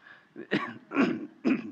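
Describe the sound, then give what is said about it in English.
A person clears their throat and coughs several times in quick succession, three or four harsh bursts with brief pauses between them, and no talking. “I'd been fighting that ever since I was reading Exodus 2.”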